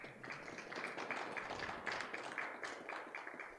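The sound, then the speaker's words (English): A small group applauds steadily, with many overlapping hand claps forming a continuous, fairly soft patter that holds from start to finish, with no voices. “Give her a long round of applause.”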